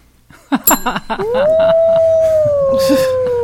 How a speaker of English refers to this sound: Okay, so we've got a dog.